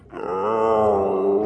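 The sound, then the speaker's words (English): A sick sea creature as big as a school bus lets out a long, loud moan, a steady droning groan that holds for over a second with a faintly wavering pitch, alone with no talking. “That's not a roar. That's a moan. You must be sick.”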